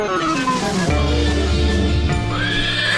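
A horse whinnies loudly, a long quavering neigh that rises and falls in pitch, with no one talking over it, introducing Glittermane, a magical horse character.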